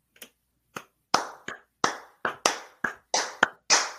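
A slow clap: about eleven sharp, crisp hand claps spaced unevenly, roughly two or three per second, fairly loud with no talking underneath.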